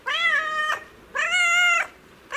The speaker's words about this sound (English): That's a domestic cat.